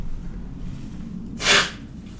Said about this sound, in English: Blow my nose real quick. I have allergies like crazy.